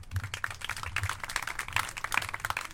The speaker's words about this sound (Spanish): Que se oiga ese aplauso, pues.